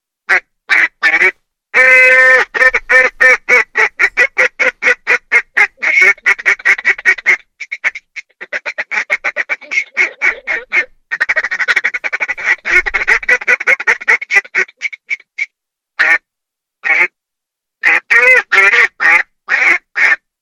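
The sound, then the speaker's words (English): A duck call blown by a 16-year-old caller in rapid, rhythmic bursts of loud quacking notes, insistent, with short pauses between runs of calls over about twenty seconds; no talking. “His calls are at Simmons Sporting Goods, and at 16 he can blow a duck call like none other, and he is an entrepreneur at 16.”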